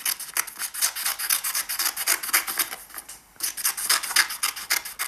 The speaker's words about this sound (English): Cutting paper. Okay. Yeah, we were right.